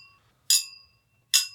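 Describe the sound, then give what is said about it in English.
Riedel tequila-specific glasses clink together twice in a toast, each strike a bright, sharp chime, with a high ringing tone that lingers between the two hits. No one speaks. “It sounds so good with these expensive glasses.”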